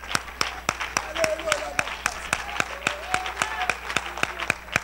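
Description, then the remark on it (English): An audience claps in unison, clapping their hands and lifting their voices to God, sharp steady beats about three per second, with voices rising and falling softly underneath. “Oh, let's clap our hands and lift our voice to God.”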